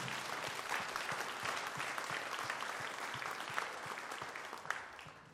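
A crowd applauds steadily for several seconds to thank people who came up and prayed in front of them, a dense, even wash of many hands clapping with a few sharper claps standing out, and no voices over it.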